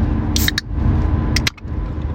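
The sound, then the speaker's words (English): A can of Bubbly Bounce caffeinated sparkling water pops open with a sharp crack and a short fizzy hiss, followed by another faint click, all over a steady low background rumble. “Let's crack something open real quick, though, before we do that.”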